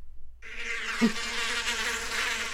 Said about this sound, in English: Those are bees. I have a soundboard app on my phone that I forgot about until just now.